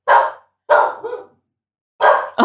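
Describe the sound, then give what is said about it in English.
A young wolf cub barks in short, sharp bursts: two yaps with a small trailing whimper, a pause, then two more quick barks, fairly loud with no talking. “He's a very young wolf, a cub.”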